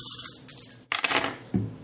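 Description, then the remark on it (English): Five dice, rolled during a tabletop game, clatter and tumble across a hard tabletop, with a burst of sharp clicks that settle into a soft final knock. No one speaks. “All right, so who wants to roll for the Iron Giant? It's going to be 5 dice. You roll.”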